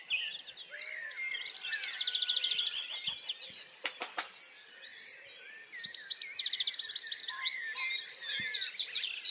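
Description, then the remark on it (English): A dense chorus of many birds singing at once in the countryside, overlapping chirps and warbles filling the air, some loud and close while others sound fainter and farther off, continuing steadily with no voices. “There are birds close to you and birds a bit further away.”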